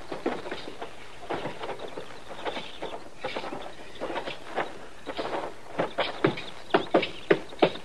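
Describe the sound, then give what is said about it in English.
Horses' hooves clip-clop on a hard surface, a loose, uneven patter that grows louder and sharper toward the end as the hoofbeats come closer. No one speaks. “You just leave your horses there and come on in.”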